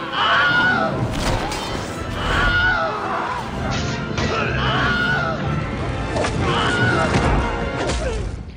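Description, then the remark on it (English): A chaotic battle din of crashes, thuds and crowd noise, with several short, sharp screams of the Wilhelm scream stock sound effect rising out of the loud, dense mix. “The Wilhelm scream is in all three Lord of the Rings movies and all three Hobbit movies.”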